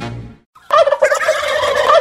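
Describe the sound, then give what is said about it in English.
A turkey gobbles loudly, a rapid warbling, rattling call lasting over a second. A brief lower sound and a short pause come before it, with no voices. “One sure thing today about those turkey birds, they are everywhere.”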